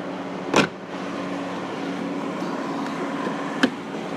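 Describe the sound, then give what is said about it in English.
Steady low hum of a car idling while waiting in a queue, heard from inside the cabin, with two brief sharp knocks breaking through, one near the start and one near the end. No one speaks. “You can get from the back of the car to the front of the car.”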